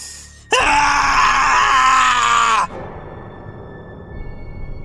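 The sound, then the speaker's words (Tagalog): A loud, agonized scream from an aswang in pain from its chest erupts abruptly and holds for about two seconds with a harsh, strained tone, then breaks off, leaving a low rumbling background. “Sigaw ng aswang habang iniinda ang sakit ng dibdib.”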